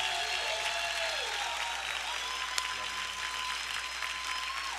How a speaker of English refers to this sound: Come on, keep clapping until he gets up. He's never gotten this applause. I want you to give it to him until he gets all the way up here.